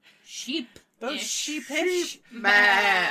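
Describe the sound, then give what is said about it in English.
Several people mimic sheep with a run of wavering, nasal "baa" bleats, short ones first, then a longer, louder bleat at the end where voices overlap. “Oh, we did it at the same time. Oh my gosh. I'm surrounded by sheep people.”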